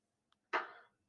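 A book slapped down flat on a table: one loud, sharp smack with a short ringing decay, preceded by a faint little tap. No one speaks.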